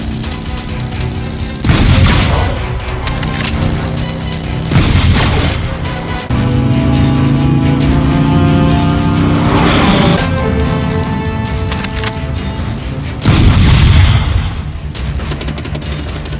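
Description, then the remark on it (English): A motorcycle engine revs and whines with rising pitch, broken by four loud, booming crashes spaced a few seconds apart. Forceful, with no talking. “so let's catch up with another motorcycle.”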